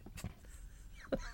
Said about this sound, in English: Was that more of a belch than a gag?